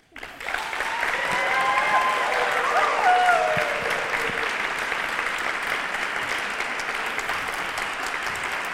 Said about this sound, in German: Und dann brauchen wir natürlich noch den Applaus, wo Sie so richtig ausrasten, wo Sie sich denken, ach, wäre das kein Wissenschaftler, würde ich den mit nach Hause nehmen.